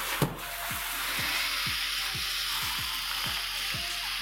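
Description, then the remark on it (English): Chester, a 13-foot alligator at Gatorland, hisses in a loud, steady, breathy rush that lasts about four seconds, with a faint low pulsing repeating roughly twice a second underneath and no one speaking. “And Chester liked to hiss.”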